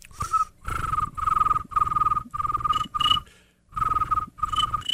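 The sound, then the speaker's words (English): A person imitates a bullfrog with a string of about seven raspy, buzzing croaks in a steady rhythm, fairly loud, with brief gaps between them and no talking. “It's like we're doing mating calls. It's a bullfrog.”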